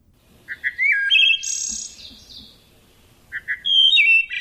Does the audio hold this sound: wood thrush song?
yes